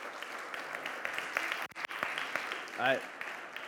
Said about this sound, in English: They are a huge part of what we do here at Catalyst, and we just want to thank them so much. So why don't you guys give them one more round of applause.